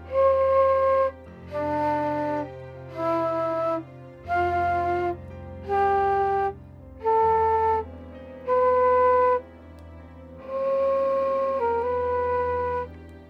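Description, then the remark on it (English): A person whistles a short tune of about eight separate held notes, C, D, E, F, G, A, B in that order, each clear and steady, with brief gaps between them and a longer final note. Fairly loud, with no talking. “Now the trick is, if you hear the whistling up close, there's no danger.”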